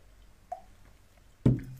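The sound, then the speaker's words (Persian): A glass of drinking water being handled as someone takes a small drink: a faint small tap, then a louder, dull clunk with a brief wet, liquid edge. No one speaks. “یه ذره آب بخورم.”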